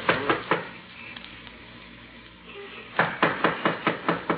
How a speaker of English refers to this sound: Well, knock on the door anyhow.